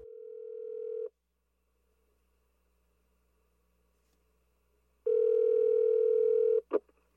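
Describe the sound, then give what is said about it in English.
A telephone ringback tone sounds in two steady bursts, about a second then roughly a second and a half, separated by a long quiet gap, clear with no talking, as a woman repeatedly calls a man's phone number. “A few days go by, and still, without getting to talk with him, nor get any information about him, she keeps calling till finally someone answers on the other side of the line.”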